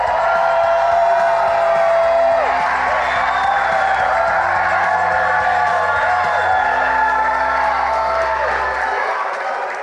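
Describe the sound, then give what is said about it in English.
A large group in San Pedro Sula, Honduras, shouts and cheers a greeting together, a loud, dense wall of overlapping voices and whoops that holds steady for about ten seconds before easing slightly at the end. “Give them a big shout out one more time.”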